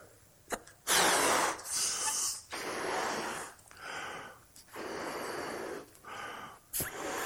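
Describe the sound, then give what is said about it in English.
Someone blows into a balloon as an illustration during a church service, with a series of long, loud, breathy puffs, each followed by a short pause or quick inhale, repeated about five times without any talking. “So I have a balloon. Inhale air.”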